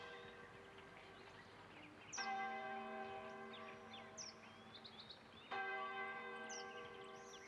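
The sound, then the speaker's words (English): A church bell tolls twice, several seconds apart, each deep ringing strike hanging and slowly fading, with faint bird chirps scattered over a steady outdoor hum. “Now, perhaps you begin to hear the tolling of a bell.”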